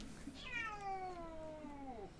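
A single long, drawn-out cat meow whose pitch slides slowly downward, fairly close and clear, with no talking over it.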